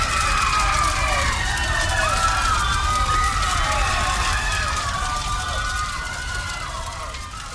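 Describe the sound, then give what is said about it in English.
A dense crowd shrieks and wails in panic as people run and trample each other while a circus big top tent burns, many overlapping high voices rising and falling over a steady rushing roar of movement, loud and continuous throughout, fading slightly toward the end. “People are running everywhere. The screams are awful.”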